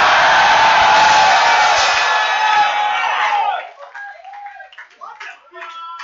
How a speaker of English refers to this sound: Are you clapping your hands for Jesus? Lift up your voice and shout.